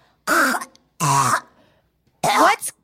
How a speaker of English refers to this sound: And I'm sorry if you guys have heard her hacking it in the background. She's got kennel cough.